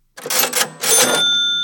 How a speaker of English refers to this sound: A cash register is where a store keeps money.